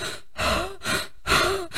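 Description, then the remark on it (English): Heavy, labored breathing after climbing stairs: quick, rhythmic breaths in and out, about four in under two seconds, separated by brief pauses, with no talking. “Oh, I'm like breathing heavy.”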